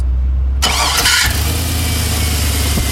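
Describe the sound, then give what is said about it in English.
A high-compression truck engine cranks and catches with a sharp burst, then settles into a loud, steady low rumble at idle, with no voices present. “Same vehicle. It's high compression for sure. Yeah. I'll play it again. Supposed to be a truck.”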